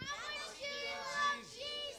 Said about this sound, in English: Okay, let's see. Whoa, they clapped, shouted, and screamed. You think you can do better than them? You think you can be louder?